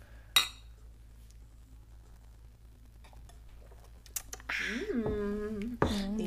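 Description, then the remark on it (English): Glasses clink together once in a toast, a bright tap with a short ringing tail, followed by a quiet pause before voices start talking near the end. “Let's cheers to that.”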